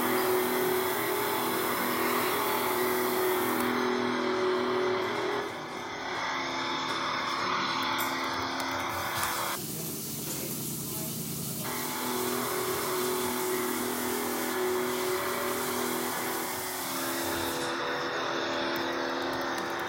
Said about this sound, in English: Gonna get these engines fired up in just a second.